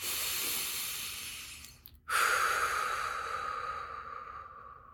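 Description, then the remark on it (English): A slow, deep breath drawn in to help center oneself, a brief pause, then a long airy exhale that gradually fades away. No one speaks. “Take a few deep breaths first, just to help center yourself.”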